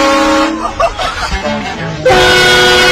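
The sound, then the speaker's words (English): A loud, blaring train-style horn blasts from a car in long sustained harmonic tones, dropping briefly mid-clip before a second powerful blast kicks in even louder. “These train horns for vehicles.”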